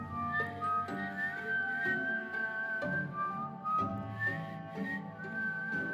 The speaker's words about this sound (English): As Roxy fell, she heard whistling.